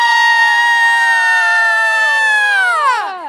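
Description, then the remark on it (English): A loud, shrill scream holds one high pitch for about three seconds, then slides downward and cuts off. No one talks over it. “The scream.”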